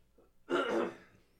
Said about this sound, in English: Still getting over this cold. Sorry, everybody. And I think I might have to clear my throat one more time.